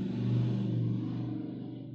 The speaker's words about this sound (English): Oh, my ride's here. Gotta go. I hate loud motorcycle noises.